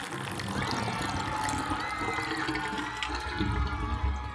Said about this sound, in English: Mighty Mila and Hal the Hamster have drained the Lucky Duck Lake of all its water. Now the bumper boats are all stuck at the bottom.